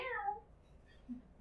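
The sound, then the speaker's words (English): A person lets out a single short, falling meow in imitation of a cat, fairly loud, then it fades into quiet with only a faint low murmur. “And apparently the druid became a cat.”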